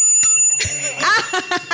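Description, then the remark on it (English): A small bell rings once to signal that someone has scored a point in a quiz game, its bright metallic tone lingering and slowly fading across the whole moment, with some faint clattering and murmuring voices underneath. “Ladies and gentlemen, every time you hear a ring, that means somebody's got a point.”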